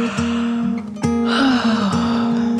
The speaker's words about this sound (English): Then she yawned.